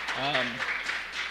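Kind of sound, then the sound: crowd, audience clapping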